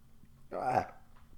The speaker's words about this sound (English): I'm burping like a motherfucker. I drink all fucking weekend. I was just fucking drinking like a motherfucker.